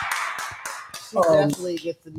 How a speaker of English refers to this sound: And then moving on to someone who deserves, I mean, gotta get her a round of applause. We just gotta clap it up for the queen. Clap it up for the queen, Naomi. Naomi Osaka.